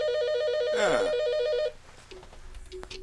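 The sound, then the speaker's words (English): A phone rings with an incoming call, a warbling, alternating electronic tone for about a second and a half, loud, then cuts off, leaving faint background noise and a couple of short beeps. “We have a caller.”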